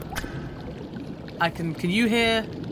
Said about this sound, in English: I can hear the rest of you can hear more drips. Yeah, he's trying to flood the in room.